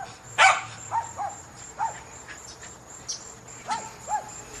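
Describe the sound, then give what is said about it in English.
A pet dog, heard in a recording being played back, lets out one loud, sharp bark followed by a scattering of shorter, high yips spaced irregularly over a few seconds, with a steady high insect-like chirring running underneath. “He liked to talk to other dogs too.”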